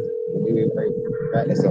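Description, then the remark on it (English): A steady electronic phone ring tone holds through the whole moment, fairly loud and unbroken, while people talk over it with no answer coming. “He's refusing to answer the phone now.”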